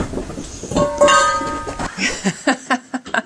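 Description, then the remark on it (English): Metal food dishes crash and clatter as a dog runs through them, leaving a bright ringing tone, followed by a quick series of rhythmic patters of paws skidding onto canvas. “I think you guys could hear the crashing through the food dishes, the sound of paws skidding onto the canvas.”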